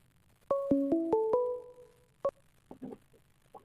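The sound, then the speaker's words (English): A quick electronic ringtone melody of about five bright, stepped notes rings out for an incoming call to the Man Tools radio show, then a single short beep, followed by faint murmuring voices. “Oh, someone's calling. We have a phone call.”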